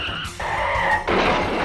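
Car tires screech loudly in a sustained, wavering squeal as a car is braked too fast and skids hard to a sudden stop, with rough road noise rising underneath toward the end.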